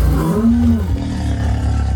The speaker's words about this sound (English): It makes a howling, snarling sound as it appears to pick up your scent.